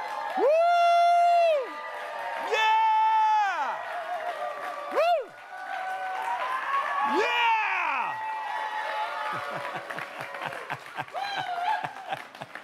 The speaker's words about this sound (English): But this morning, when you see this screen, we are going to stand and shout and clap. So I want us to practice.